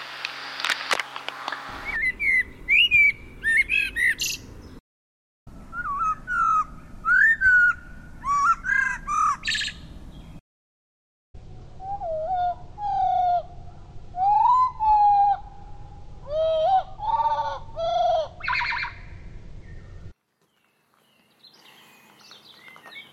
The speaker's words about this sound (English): Experiment one. I've had this crazy idea that it might be possible to understand what birds are telling us by slowing down the recordings I've made of their songs.